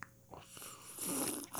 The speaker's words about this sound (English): It's from Bent Brewstillery. Mm-hmm. It's called Gunner Ghost Gin. Ooh, listen to me take a sip of this.